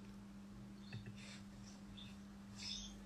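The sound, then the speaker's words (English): Faint birds cheep in a few short, high chirps scattered across a quiet background with a steady low hum. Nobody talks. “Oh, we've got some birds cheeping somewhere.”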